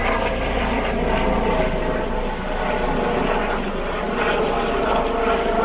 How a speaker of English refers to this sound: we've got a helicopter going over.